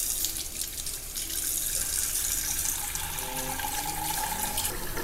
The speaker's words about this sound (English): So the best way to clean this up that I found is just to add some water to it. Fill your pan about with water about half full.